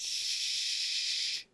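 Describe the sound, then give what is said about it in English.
A voice imitates air hissing out, a steady, bright hiss held for about a second and a half before it cuts off abruptly. “Is that … or the air leaving you? It's both.”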